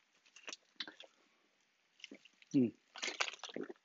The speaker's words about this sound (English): Water break.